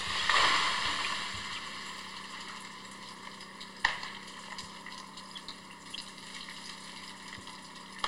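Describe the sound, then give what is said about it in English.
Ice-laden trees creak and break in an ice storm over a steady droning background, with one sharp, loud snap midway and fainter scattered pops and ticks afterward. No one speaks. “you can hear it creaking.”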